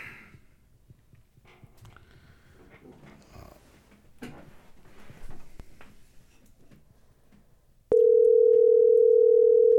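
A loud, steady telephone dial tone cuts in abruptly near the end and holds unbroken, following several seconds of faint shuffling, clicks and handling noises from a phone being positioned so everyone can hear the call.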